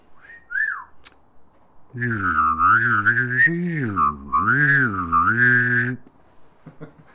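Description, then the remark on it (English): Someone whistles a brief rising-and-falling chirp, pauses, then holds a wavering, buzzy whistled tone for about four seconds, fairly loud, with no talking. “I gotta wet my whistle because it's a whistle.”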